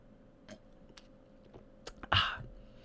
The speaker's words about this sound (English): Oh, another sip of wine.